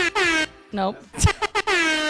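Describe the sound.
Two loud, blaring air horn blasts, one at the start and a longer one at the end, with a brief burst of voices and chatter in between.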